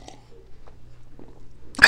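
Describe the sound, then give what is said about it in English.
A brief slurp of someone sipping homemade pumpkin spice coffee, arriving after a couple of seconds of near silence with faint small clicks and a low background hum. “Anyways, yeah, let me take a sip of this coffee.”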